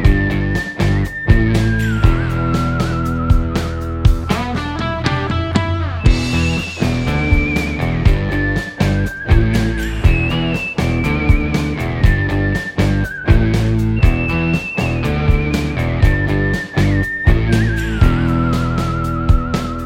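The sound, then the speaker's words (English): A bright whistled melody rises and falls over a full band with a steady, punchy drum beat, the clear whistling carrying the tune throughout. “Better believe it when I whistle goodbye.”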